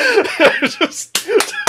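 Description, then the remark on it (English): Several sharp hand slaps as a group of men high five after getting down crack out loud, spaced unevenly, following a burst of excited vocal sounds and exclamations. “Everybody high fives you. It's just like between, there's just so many guys just slapping each other right now.”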